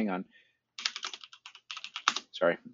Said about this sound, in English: Keyboard is loud as shit.